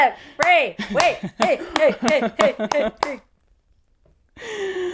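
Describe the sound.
A steady run of about nine sharp hand claps, evenly spaced, with voices laughing and talking over them. The claps stop, a short silence follows, then a voice resumes.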